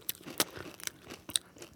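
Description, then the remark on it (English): Crunchy cereal with milk chewed right up against the microphone, a series of sharp, crackly bites in an irregular rhythm with soft wet mouth sounds between them, no talking. “I'm having one with milk. I'm just going to go into and chew the mic.”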